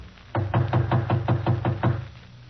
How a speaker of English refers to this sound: The door's partly open. If he's home, why doesn't he answer? I'll knock again.